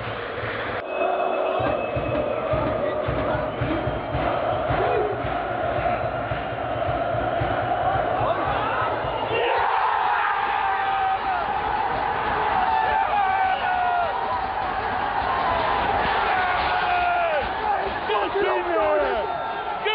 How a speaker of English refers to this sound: The Besiktas fans certainly making some noise now. They're on top of this.